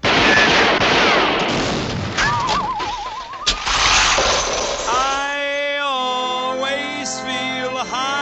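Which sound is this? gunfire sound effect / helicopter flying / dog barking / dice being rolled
gunfire sound effect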